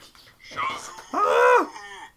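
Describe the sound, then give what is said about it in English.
A phone's text alert plays the German cow sound from Family Guy: a brief voiced lead-in, then a loud, drawn-out, wavering moo that fades at the end. Clear, with no one talking over it. “That has been my fucking text message notification since the dawn of existence on this planet.”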